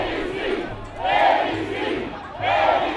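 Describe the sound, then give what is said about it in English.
A large crowd of supporters of far-right presidential candidate Jair Bolsonaro, draped in Brazilian flags, chants "Yes, him" in Portuguese in front of his home in an upscale Rio de Janeiro neighborhood, Brazil, awaiting election results; many voices swell together in a loud, repeated phrase that rises and falls about every second and a half. “A chant rolls over the crowd.”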